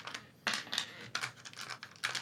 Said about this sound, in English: That sounds like a lot of dice. Yeah. How many dice are you getting out, man? It sounds like I'm grabbing more than I am because I'm trying to grab them in the pile of dice that I have. So it sounds like there's more.